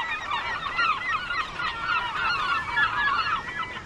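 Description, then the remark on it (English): A dense chorus of herring gull calls, many birds crying and squealing at once in an unbroken, overlapping clamor, with no one speaking. “The Music of Herring Gulls”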